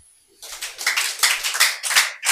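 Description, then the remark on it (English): An audience breaks into clapping for God after a brief quiet start, a dense wash of many hands with sharp, crackling bursts that swell and dip in loudness over a couple of seconds. “Please clap for God.”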